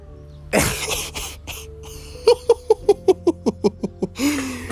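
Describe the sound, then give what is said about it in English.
A dog reacting to a ringing phone lets out a quick run of about nine sharp, evenly spaced barks, fairly loud, ending in a rising, drawn-out howl, after a few scattered noisy bursts. “The phone's ringing and my dog's in there losing his mind.”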